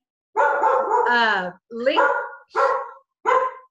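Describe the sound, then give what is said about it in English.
A dog barks loudly: one long, drawn-out, wavering bark followed by three shorter, sharp barks spaced about half a second apart. “Sorry, dog here.”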